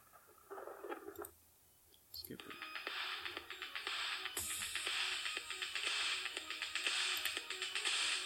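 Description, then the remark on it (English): Electronic film main theme music: after a brief opening phrase and a short gap, bright buzzing synth layers swell over a steady, clicky percussive pulse that continues to the end. “I guess you could call it a theme song, but it's not really just a theme song.”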